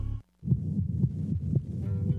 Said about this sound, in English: This may just sound like a sweet heartbeat, but notice how your own heartbeat steadies, how in the moment you feel. A music therapist at Advent Health used a baby's heartbeat to create this song to help soothe its mother in our care,